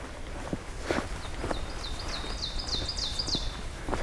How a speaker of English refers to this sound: It's also a magnolia warbler again.